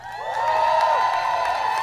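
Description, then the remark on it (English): An audience cheers loudly and steadily, a dense wash of overlapping shouts and whoops that sustains without a break from start to finish. “Give the Harvest Barn a great big cheer.”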